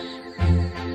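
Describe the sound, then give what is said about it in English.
A single sudden sneeze bursts out about midway, loud and voiced with a low rumbling tone, lasting under half a second over a steady tonal background. “Bless you.”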